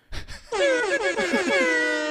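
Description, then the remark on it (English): A loud, blaring air horn sound effect kicks in after a couple of short thuds, its brassy tone wobbling in quick pulses for over a second and a half with no talking. “You know I'm actually going to insert an air horn sound.”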